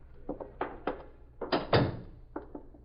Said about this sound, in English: All right. Get the door.